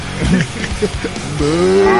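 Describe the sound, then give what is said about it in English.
A low, drawn-out moo swells in after some brief chatter, holding steady and fairly loud until the end. “Sorry, I love the cow.”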